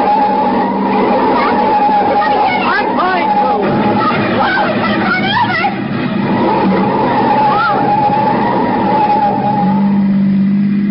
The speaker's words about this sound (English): I'm going to pull him one side, slam on the brakes, and see what happens.